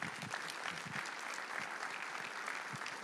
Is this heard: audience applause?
yes